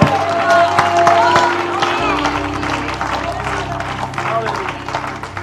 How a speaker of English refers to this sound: Give Him a hand clap and shout of praise one more time. One more good voice of praise in this house.